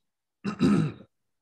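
A single short, fairly loud throat clearing lasting about half a second with a rough, gravelly rasp, followed by silence.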